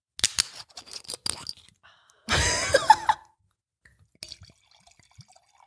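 Rosé wine splashes into a glass in one short pour lasting under a second, preceded by a series of sharp clicks and clinks of handling, with a few faint taps afterward.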